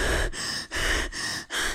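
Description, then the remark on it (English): A voice imitates heavy, out-of-breath panting after sprinting to catch a plane: four quick, loud, breathy gasps in a steady rhythm, with no words spoken. “So I sprinted as fast as I could and I got to my plane and I was just so out of breath. I was just breathing like this.”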